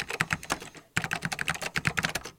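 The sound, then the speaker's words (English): Rapid typing on a vintage Apple PowerBook laptop keyboard, tactile and responsive, with crisp clicky keystrokes in an uneven rhythm and a brief pause midway, heard alone without any talking. “That keyboard is spectacular. It feels very similar to the classic, beloved Apple Extended keyboard. It's tactile and responsive in a way that the next generation PowerBook keys are not.”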